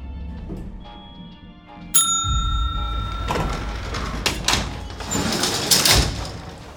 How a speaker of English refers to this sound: Doesn't look like there's anyone here. Better hold the elevator doors.